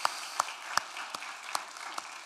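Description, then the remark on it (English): A church audience applauds their pastor, a dense, steady wash of clapping with a few sharper individual claps popping out at regular intervals. Overall it is fairly soft, with no voices. “a big round of applause for all that he does to lead this church.”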